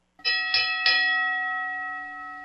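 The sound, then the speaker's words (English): A boxing ring bell struck three times in quick succession as part of a ten-bell count in memory of Angelo Dundee, each clang loud, its bright metallic tone ringing on and slowly fading afterward with no voices. “And Lee, if you can give me a 10-bell count for Angelo, I would appreciate it.”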